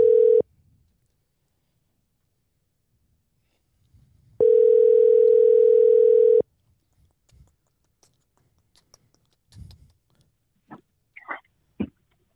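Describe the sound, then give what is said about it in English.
A telephone ringback tone, one brief burst and then a full two-second ring after a pause, steady and loud, followed by faint clicks and line noise. “Is it ringing?”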